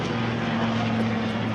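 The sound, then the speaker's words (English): A helicopter drones steadily overhead, a loud, constant engine roar with a low humming tone running through it, and no voices. “Wow, helicopter.”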